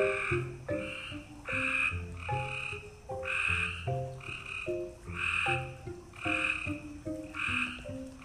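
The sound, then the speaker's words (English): A chorus of frogs croaks steadily at night, with rapid pulsing calls repeating about every half second and overlapping in a loud, continuous, rhythmic drone. No voices are heard. “Oh my gosh, those frogs are driving me crazy, Jet's mom remarked as she was tucking him in for the night.”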